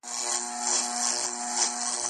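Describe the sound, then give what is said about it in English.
A steady, loud mechanical drone of airplane propellers slightly out of sync, producing a harsh, buzzing, dissonant hum with low tonal beating that holds unbroken throughout, with no voices. “So I guess if the RPMs of the propellers are not spinning exactly at the same speed, you get that dissonant noise.”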